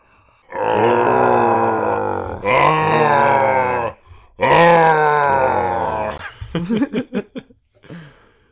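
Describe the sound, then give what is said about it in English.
A voice imitates Swamp Thing crying out in pain and sadness after ripping off his skin to reveal plant matter: two long, loud, strained groaning howls, followed by a burst of choppy, gasping grunts that trail off. “And then he cries out in pain and sadness.”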